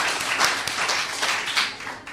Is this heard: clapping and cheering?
yes